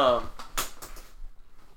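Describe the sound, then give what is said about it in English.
A squeaky chair creaks as someone shifts in it, unable to get comfortable: a brief high, squeaky tonal whine, then several sharp clicking knocks in quick, uneven succession before it falls quiet. “I'm not really loving that chair anymore. Squeaky. Yeah. Yeah, it's super squeaky.”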